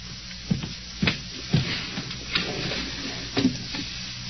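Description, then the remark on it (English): A drawer being opened and rummaged through to get a gun: a handful of irregular wooden knocks and clicks, each with a low thump, spaced about half a second apart over a soft background, with no talking. “What are you doing in that drawer? Just getting this gun.”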